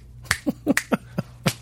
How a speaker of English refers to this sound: Three snaps and a butt slap.